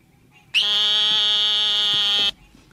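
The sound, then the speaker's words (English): A single sustained, nasal buzzing bleat of an eastern narrow-mouthed toad, steady and loud for nearly two seconds, with faint clicks and croaks of green tree frogs calling in the background. “Yeah, the eastern narrow-mouthed toad. Here we go.”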